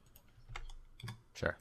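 A few soft, separate clicks of computer keyboard keys being pressed, spaced irregularly about half a second apart, fairly quiet, with no other sounds around them.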